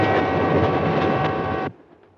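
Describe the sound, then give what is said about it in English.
A passenger train with sleeping berths, travelling overnight to Chicago, rolls along the rails with a loud, steady rumble and a droning hum, then cuts off abruptly, leaving only a faint background. No one speaks. “A train may be an old-fashioned way to travel, but an upper berth can be a lovely place to go when it's your time to go.”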